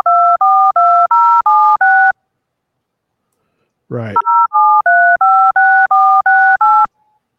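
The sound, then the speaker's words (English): A rapid series of clear, evenly spaced touch-tone keypad beeps, each a dual-pitch tone, broken by a short pause and a brief voice before another run of about ten dialing tones. “So in order to figure out what this is, if you open up the a DTMF app, it will tell you what numbers those are as you go.”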